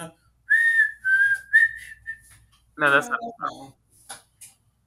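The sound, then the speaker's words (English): A person whistles a short, clear melody from the film Kill Bill, sustained rising and falling notes for about two seconds, then a voice briefly speaks. “A long siren, I'm saying, I know it was the whistling.”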